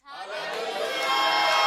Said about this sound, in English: If you believe it, then shout.